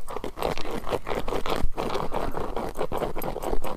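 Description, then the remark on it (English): A dog scratching under a bed near the microphone in a fast, steady rhythm, each stroke a loud, dry rasping scrape that keeps going for several seconds with no voices over it. “He went under my bed and started scratching.”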